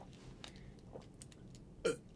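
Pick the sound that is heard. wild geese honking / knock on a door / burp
burp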